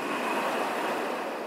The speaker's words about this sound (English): The fishermen are getting ready to go out to the sea on their tiny boats. They kiss their wives and kids goodbye and leave their poorly lit, poorly heated huts, disappearing into the night, into the storm, into the raging waves.